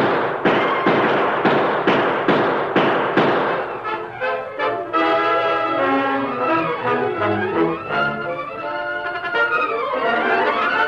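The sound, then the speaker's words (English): A rapid volley of about eight sharp, loud gunshots cracks out in quick succession during a shootout in a Lone Ranger radio drama, then gives way to swelling dramatic orchestral music with no voices. “Drop that gun!”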